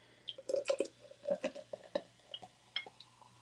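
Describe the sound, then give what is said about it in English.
Champagne poured to refill a glass that also has Jack Daniels in it, a run of uneven gurgling glugs and fizzy splashes over about three seconds, with no one talking. “Let me pour more in this motherfucker.”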